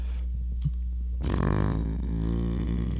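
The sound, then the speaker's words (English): A single long, gravelly burp after drinking seltzer rumbles out for about a second and a half, loud and low-pitched, slowly tapering off over a steady low background hum. “got them seltzer burps.”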